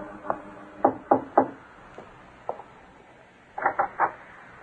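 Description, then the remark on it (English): A young woman knocks on the wooden door of an artist's studio in Greenwich Village, New York, on an early spring evening, in irregular bursts: a few sharp raps, a couple of lighter taps, then a final quick triple knock. Fairly loud, with no voices. “In the early evening of a bright spring day, a young lady climbed the four flights of stairs to the studio of a famous young artist in Greenwich Village and knocked.”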